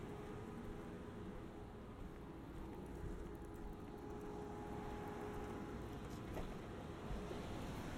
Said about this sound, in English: All right, so we're inside the car and you're probably hearing a very loud noise. That's actually the air conditioning working. We currently have it going at 60 degrees for both of us.